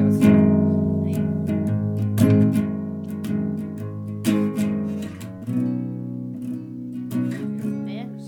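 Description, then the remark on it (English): A guitar is strummed during a sound check in a steady, loose pattern, each chord ringing out with sustained tones between sharp strokes; a few chord changes, moderately loud, with no voices. “I guess we'll do a sound check while you're playing. Okay. Or something. Just strum a little bit.”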